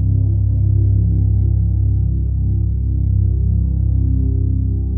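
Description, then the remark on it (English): A loud, steady low-pitched mechanical hum drones continuously with a faint pulsing texture as an MRI scanner moves a patient out of the scanner, with no voices. “The loud hum of the machine as it moves him out of the scanner.”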